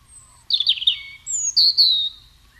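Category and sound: bird, chipping sparrow song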